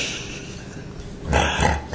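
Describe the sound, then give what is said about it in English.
A voice imitates a pig, giving a short burst of low, rough grunting oinks that starts after a quieter, noisy lead-in and ends with one more brief snort. “The sound that pigs make, yeah.”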